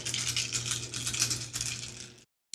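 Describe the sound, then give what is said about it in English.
Seven dice rattle and tumble together in a steady, busy clatter for about two seconds, fairly loud, then stop abruptly into silence; a dexterity plus brawl roll in a tabletop roleplaying game. “Okay, and now he's going to roll 7 dice.”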